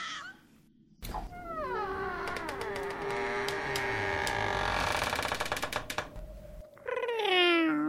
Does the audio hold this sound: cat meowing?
yes